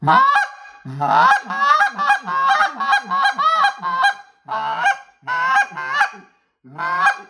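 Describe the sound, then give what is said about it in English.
An Exit goose call blown in a rapid series of sharp, loud honking notes, with short pauses between bursts, convincingly imitating a flock of calling geese. “GOOSE CALL TIPS! How to: Find your Best Call”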